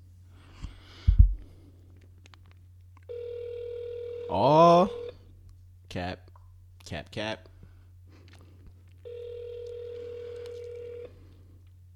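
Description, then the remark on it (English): An outgoing phone call to a friend rings out twice with steady, evenly spaced ringback tones and no one picking up, with a man's brief remarks between the rings over a low electrical hum. “My dog not gonna answer the phone.”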